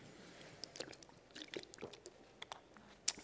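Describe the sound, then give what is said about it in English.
Someone quietly sips water, with soft wet mouth clicks and swallowing sounds scattered over a few seconds and one sharper click near the end. No one speaks. “And I drink a little water from time to time so that I can keep going.”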